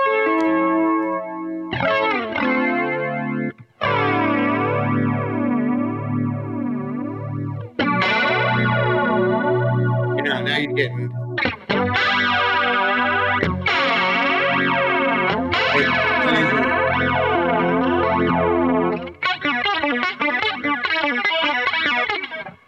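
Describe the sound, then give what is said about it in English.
A distorted electric guitar plays chords through a heavy flanger, its jet-like whooshing sweep rising and falling throughout. Loud, with brief pauses between phrases and no talking. “About that level, I need distortion to do it, but that's the kind of flange we're getting to now, is more like serious flangey flange.”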